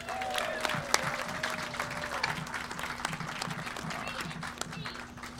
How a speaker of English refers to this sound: Round of applause, Pippa Mann.